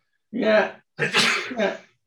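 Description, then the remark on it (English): A single loud sneeze: a voiced, drawn-in "ah" followed a moment later by a sharp, breathy burst that trails off. No talking accompanies it. “And you'll have to forgive me. I'm going to sneeze.”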